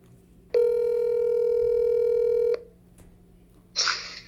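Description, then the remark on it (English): A single steady electronic ringback tone hums over a phone line for about two seconds as someone calls a man, then cuts to near silence before a brief crackling click as he picks up the call. “But we have a segment where we're just going to try to call him and see if he answers.”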